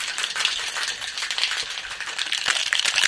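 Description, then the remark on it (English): Dense, continuous metallic rattling with rapid clatter as ice is shaken hard inside a cocktail shaker holding egg white and lemon to emulsify the ingredients, bright and steady for the full few seconds with no talking. “So we really want to give this a very good shake.”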